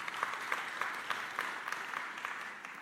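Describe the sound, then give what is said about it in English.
An audience claps steadily, a dense patter of many hands with a few sharper claps popping out, held at an even moderate level throughout with no voices. “Yeah, that's worth a round of applause.”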